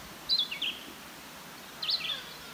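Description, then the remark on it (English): Porcupine mating calls: two brief bursts of high, squeaky chirping squeals, separated by about a second of quiet, fairly faint with no talking. “Sounds like a porcupine mating.”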